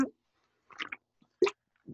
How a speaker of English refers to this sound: Take another sip of this Truly can right quick.